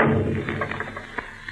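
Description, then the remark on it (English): A heavy secret door in a house rumbles shut with a low thud, followed by a quick run of small clicks and knocks that fade out. “Close it, that door!”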